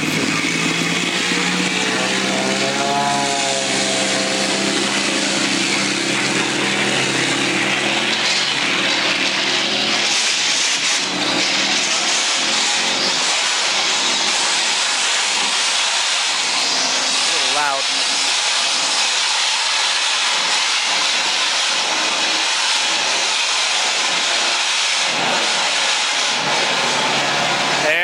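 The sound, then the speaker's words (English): A small propeller plane's engine roars loudly and steadily, with a broad hissing rush and wind noise as it powers up and accelerates down an airstrip for takeoff. “So I'm just going to show a quick video here of a takeoff that I did just so you can sort of see what it's like.”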